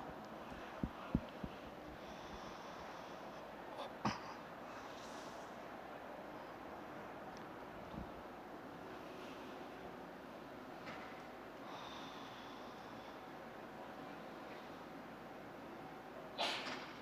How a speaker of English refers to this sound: Bless you.